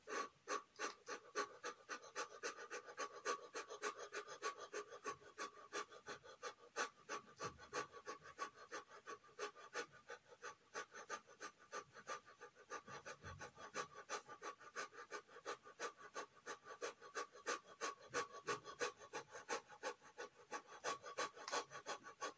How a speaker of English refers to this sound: and we'll begin with those quick breaths, followed by the slow ones. So let's begin with those quick breathing.